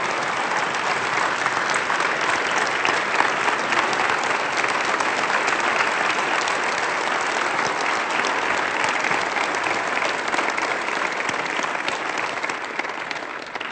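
Sustained audience applause, a dense steady wash of many hands clapping at an even loudness for about fourteen seconds before easing off slightly at the end.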